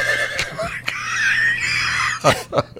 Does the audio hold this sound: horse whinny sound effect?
yes